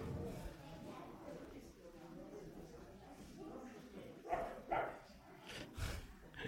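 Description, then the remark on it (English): A person mimics a dog's bark at a dog, with a few short, sharp yelps in quick succession near the end, over a murmur of background voices and room noise. “barking at the dog”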